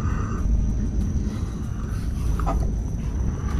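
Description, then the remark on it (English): A blender blending feces and urine in a glass container runs steadily the whole time, a loud, low churning roar with a thin constant whine riding above it and no pauses or speech. “We've got some poop in a glass container. Fuck the blender jar.”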